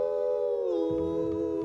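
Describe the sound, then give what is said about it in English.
Voices let out a long, drawn-out imitation of a howl at the moon, sung as part of a cowboy song. The pitch slides downward, then holds steady, while a soft rhythmic backing comes in underneath partway through. “We're gonna hoop and holler and howl at the moon.”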